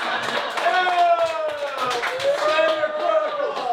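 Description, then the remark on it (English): A burst of audience applause for a Selsun Blue reference in a joke, steady clapping from a crowd for a few seconds, with a voice carrying over the top of it. “No applause break for the Selsun Blue reference?”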